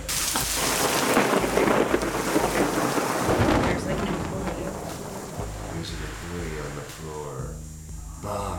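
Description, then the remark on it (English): Garbage cans being moved around make a steady, loud rumbling and scraping clatter for several seconds, while people talk over the noise in the second half. “I hear the garbage cans being moved around.”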